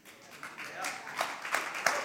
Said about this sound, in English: Clapping for me again, man. I was really wondering how that would go over.